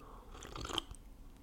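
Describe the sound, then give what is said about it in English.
A short, quiet slurp of someone sipping tea, a soft wet rustle lasting under a second, with no talking. “But anywho, so I'm taking a sip of my motherfucking tea here, boy.”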